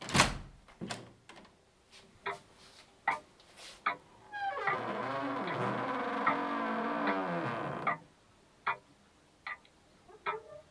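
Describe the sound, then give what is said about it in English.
A door, door number 3, creaks slowly open with a long, wavering groan, preceded and followed by a scattering of sharp clicks and knocks, fairly loud. “You have chosen door number 3. Strange choice. This door is very peculiar, with a slight touch of the weirdness, to be sure.”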